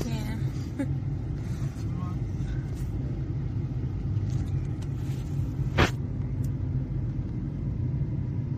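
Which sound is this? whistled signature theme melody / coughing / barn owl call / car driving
car driving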